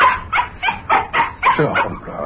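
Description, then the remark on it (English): A dog barks excitedly in a quick string of about seven sharp, yippy barks, loud, with a few higher whining notes near the end, as it begs to go for a walk. “Yeah, now you got to bark it again.”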